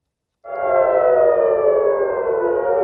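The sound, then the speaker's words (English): Air raid sirens in Israel at the new year warning of Hamas rocket fire: a loud siren starts abruptly and holds a steady, sustained wailing tone with a slight downward drift, sounding across an open area with faint rumbling noise underneath. “Sirens rang in the new year in Israel as Hamas fired rockets.”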